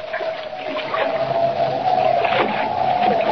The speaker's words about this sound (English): Boarding Jimmy's small catboat, Kent embarks on the short run to Lighthouse Point over choppy water and in a freshening wind.